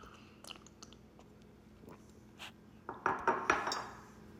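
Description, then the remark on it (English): Someone sips coffee from a mug, with soft slurps and a few light ceramic clinks clustered near the end, with no talking. “Let me sip my coffee.”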